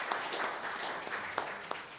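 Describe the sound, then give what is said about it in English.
A church audience applauds for a birthday, a dense steady patter of many hands clapping at once, with a few sharper individual claps popping out above the wash. No one speaks over it. “we want to just give them a clap and thank them for their birthday.”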